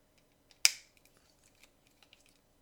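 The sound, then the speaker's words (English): A sharp plastic click as a toy robot's legs are folded down and its shoulder pads folded out, followed by a scatter of faint, small ticks and rattles as the pieces are handled. No voices. “Fold down the legs, fold out the shoulder pads, and we're almost really done.”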